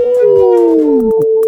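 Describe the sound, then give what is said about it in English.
Several people howl together on a count of three in imitation of wolves, a loud sustained group howl with overlapping voices gliding slowly downward in pitch over about a second and a half. “you know, I think we should make it a thing that we howl at the end.”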